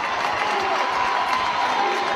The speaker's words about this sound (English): Crowd finally making some noise here. It's almost a packed house here today at Bearcat Arena.